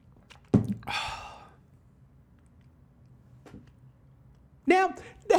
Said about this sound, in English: Let's take a quick sip break.